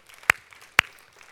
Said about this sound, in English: Sure, we can clap on that.